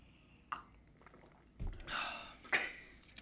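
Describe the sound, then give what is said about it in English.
A wet slurping sip of beer followed by a swallow and a few small mouth clicks, fairly quiet overall with no talking. “Very audible sip.”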